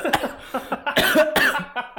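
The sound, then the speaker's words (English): A quick run of harsh coughs, fairly loud, bursting out in uneven clusters with short gaps between them and no talking. “Oh man, I had to cough because that idea was so fire.”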